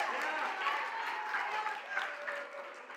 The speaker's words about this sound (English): Your clapping is giving me some really weird vibes right now.